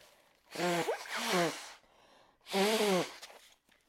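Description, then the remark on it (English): Someone blows their nose: two loud, honking nasal blasts in quick succession, a short pause, then a third forceful blow, each a breathy rush with a buzzing tone. “I need to blow my nose.”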